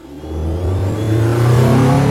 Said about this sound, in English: A car throbbing with music and testosterone, fast and slow-mo at the same time, a retrograde pull of sound, vision and air. That was Friday night, the car.